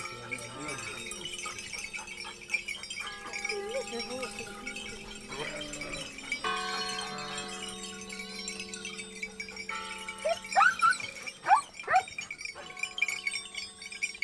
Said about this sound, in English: We leave you this week in the company of sheep. Benito is bringing his 50 belled sheep down for milking to a village above Carrara in the Marble Mountains in Tuscany, as the church bell rings to signal a funeral.